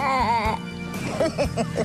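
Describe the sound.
A wavering, quavering baa from a human voice imitating a sheep in a play, followed by a run of short, pulsing bleat-like sounds, fairly loud; from the film The Preacher's Wife.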